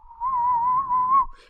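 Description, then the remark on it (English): A person whistles one steady, sustained note with a slight waver, held for just over a second, fairly loud, with no talking. “You know, I've been working on my whistling so much lately.”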